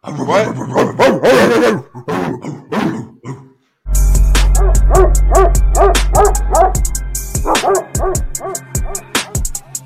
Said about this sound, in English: But let's get to the dog of the day. If they're barking, let's have them bark.